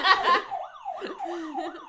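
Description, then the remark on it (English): A game-show host's buzzer, which signals the rounds, goes off: a brief noisy burst, then a loud wavering electronic tone that swoops up and down several times, like a siren wail, with no talk over it. “It's appropriate because my nose smell sounds kind of like a foghorn when I blow it sometimes.”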